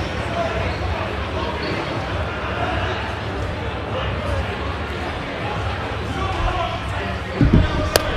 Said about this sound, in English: Slapped the taste out of his mouth.